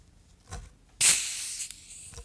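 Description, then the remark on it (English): A soft tap, then a sudden bright hiss of Diet Pepsi fizzing as it pours, loud at first and easing into a steady crackling sizzle that continues to the end. “Came in hot there at the end. A little sizzle.”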